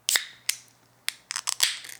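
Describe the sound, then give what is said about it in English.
A beer can being opened: a few sharp metallic clicks and scrapes, then a bright crack followed by a short fizzing hiss. No one speaks. “Let's open her up.”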